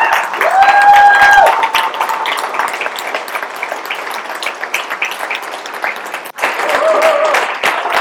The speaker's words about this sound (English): Why didn't you stand and just applaud everything that she does?